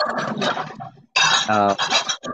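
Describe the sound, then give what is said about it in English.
Dishes clatter and clink in a quick, irregular run of sharp knocks, with voices murmuring. “Are you doing dishes?”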